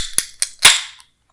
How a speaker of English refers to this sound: Give it a little cracking of a beer. Ready for the cracking of a beer.